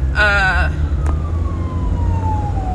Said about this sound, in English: Ambulance.